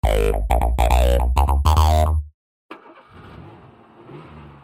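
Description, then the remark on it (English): A small car engine sputters and revs loudly in several choppy bursts, goes briefly silent, then gives way to a steady, softer rumble of the car driving along. “Your car is kind of small, but it rides pretty good.”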